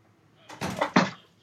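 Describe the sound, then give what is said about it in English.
A studio door is opened: a short rattle of handle and latch, then two quick, fairly loud clunks as it swings, all within about a second, with no talking. “Go through the door here.”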